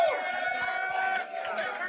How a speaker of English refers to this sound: Can we get a big cheer for Terry Morton's Indiana Hoosiers?